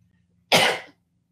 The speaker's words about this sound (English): sorry, I'm going to sneeze again.